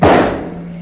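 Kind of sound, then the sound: impact, rifle shot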